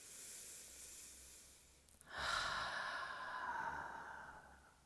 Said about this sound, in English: One more deep breath like this, breathing in the nose, exhale out the mouth.